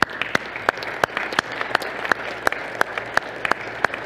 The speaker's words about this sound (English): So what I'd like you to do now is, if you can give them all a round of applause.